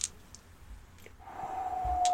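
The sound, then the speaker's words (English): Dice clatter in a few scattered, light clicks spread over a couple of seconds, fairly quiet, while a faint steady tone swells in the background. No one speaks. “I am going to roll these dice, and we are going to see what fucking happens.”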